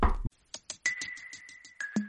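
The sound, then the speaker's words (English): A quick, even run of about ten light knocks on wood, with a steady high-pitched tone sounding alongside them and a brief lower note at the end. “I'm going to knock on wood right now for some reason.”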